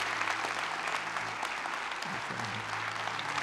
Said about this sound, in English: Would you give it up and give him a great big hand clap?